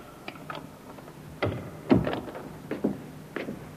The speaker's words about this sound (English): The door, Inspector. I heard it, Sergeant.